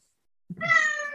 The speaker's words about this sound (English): Oh, no, that was my cat. Oh, yeah, child of some kind. Same it thing. It was a cat. That is what I heard.